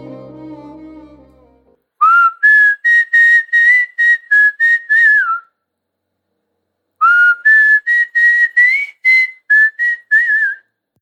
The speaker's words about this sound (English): You know, I love whistling.